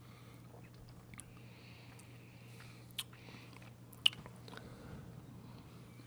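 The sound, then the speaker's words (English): Wet chewing of cilantro as a palate cleanser after drinking Bourbon County beer, with soft crunches and squishy bites repeating irregularly over a low steady hum, including a couple of sharper snaps; no one speaks. “Cilantro. So this will definitely cleanse the Bourbon County.”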